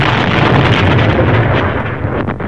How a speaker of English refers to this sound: He sets off this big explosion.